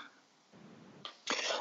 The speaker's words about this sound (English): I've still got the same tickly cough, guys.